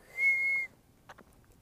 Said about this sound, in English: Getting better at whistling. But whenever I whistle inwards. Like, I breathe in.